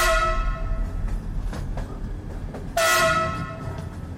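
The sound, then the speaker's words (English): A train horn sounds in two loud, sustained blasts, the second starting abruptly after the first fades, over a steady low rumble of a moving train. No voices. “Well, take that boogie train.”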